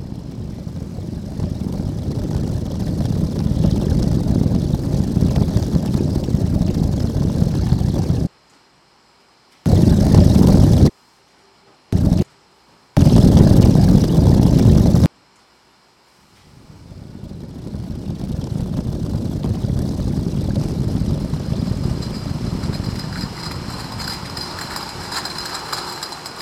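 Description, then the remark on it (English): Brewery mash being cooked in a giant metal vat at a brewery in California gives a steady, loud, low roaring rumble, broken midway by several abrupt silent cuts before the drone fades back in. “This is the mash being cooked in a giant metal vat.”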